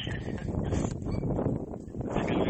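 Steady, loud wind buffets the microphone, producing a continuous low rumbling roar with gusty surges and no clear voices.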